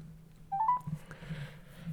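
A short burst of telephone touch-tone dialing: three or four quick beeps in rapid succession, moderately loud, followed by a low steady hum and faint room noise.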